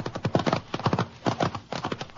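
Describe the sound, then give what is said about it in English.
Horse hooves clip-clop in a steady, rhythmic walking pattern, each hoof strike a sharp hollow knock repeating throughout, fairly loud with no voices over it. “Get up, Charlie. Up, boy.”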